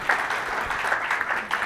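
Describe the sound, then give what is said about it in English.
Steady applause from an audience for staff therapists from the Kessler Institute for Rehabilitation, a dense wash of many hands clapping at an even level throughout, with no voices standing out. “So again, just sort of thanking them and giving them kind of a round of applause because they do a really great job.”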